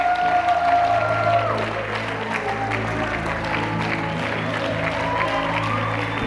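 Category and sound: crowd, audience clapping hands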